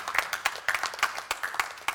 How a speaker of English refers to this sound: You see, most of us are applauding Jesus right now because we'd agree with that. Some of you aren't applauding because you're too cool for school and it wouldn't matter what the person up the front said.